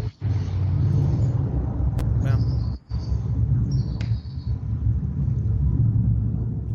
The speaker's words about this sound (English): Yeah, I was waiting for the airplane to land.